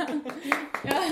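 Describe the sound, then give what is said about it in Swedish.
A single man claps for himself a few times, the sharp slaps scattered unevenly beneath overlapping voices that talk and react throughout. “Han satte igång sin egen applåd.”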